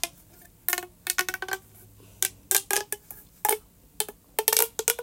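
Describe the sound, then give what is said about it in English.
Plastic snap tube fidget toys (pink, red and blue) clicking in quick, uneven bursts of sharp, bright snaps separated by brief pauses, crisp and fairly loud with no talking. “So, snap tubes. My guinea pigs hate them, but I love them. Let's just listen to it.”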